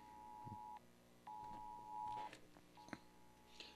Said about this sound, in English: Uh-oh. Yeah, it's a alarm weather, on my phone. More weather emergencies coming through?